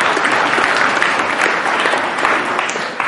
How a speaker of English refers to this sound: Go and give them a round of applause, because I don't want them to feel left out.